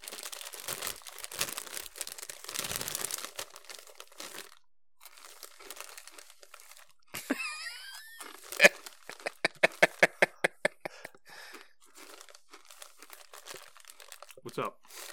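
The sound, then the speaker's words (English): Loud crunching of ice chips being chewed, with dense grinding bursts early on, then a quick run of sharp, evenly spaced crunches before it fades to quieter rustling. “You eat ice chips!”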